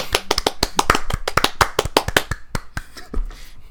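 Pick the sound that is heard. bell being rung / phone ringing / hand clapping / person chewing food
hand clapping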